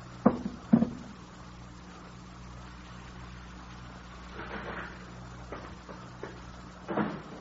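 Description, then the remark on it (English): Two sharp clicks of a vestibule door latch being released, followed by softer creaks and a bump as the door is pushed open, with a steady low hum in the background and no voices. “Excuse me, I better release the door.”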